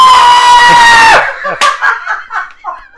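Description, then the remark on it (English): A loud, sustained scream blasts in at full volume with harsh clipping distortion, then cuts off into breathy, laughing vocal fragments. “That's probably got so much clipping.”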